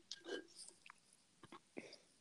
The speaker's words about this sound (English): All right, I'm just going to sit back and sip my tea.